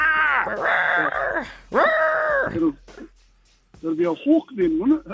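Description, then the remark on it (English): A person imitates a hawk's call with two long, strained, high-pitched cries separated by a brief pause, followed by someone talking. “It'll be a hawk then, won't it?”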